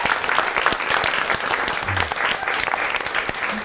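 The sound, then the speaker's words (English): An audience claps steadily for a guest who has come to share his story, a dense, even wash of many hands with no voices standing out, holding the same loudness throughout. “So everybody give him a round of applause.”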